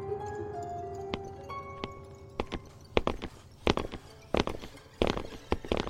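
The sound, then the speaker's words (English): Echoing footsteps deep underground, sparse at first and then coming faster and louder as they draw nearer, each hard step ringing out over a low background hum. No one speaks. “We stood still as the footsteps got closer. The echoes made it impossible to tell how many things were approaching.”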